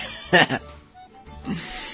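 A single sharp, breathy sneeze bursts out loudly with a hissing rush, then fades into quiet breathing and a soft vocal murmur.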